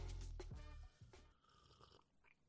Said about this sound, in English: I'm going to take a little sip of my coffee here.